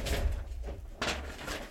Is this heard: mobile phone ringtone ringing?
no